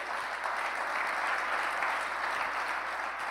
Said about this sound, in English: Give Jesus a big round of applause for that.